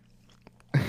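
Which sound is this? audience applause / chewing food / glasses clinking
chewing food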